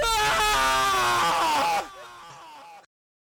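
A man lets out a loud, strained yell lasting nearly two seconds, full-throated and raw, then it breaks off abruptly, leaving a fainter trailing groan before silence.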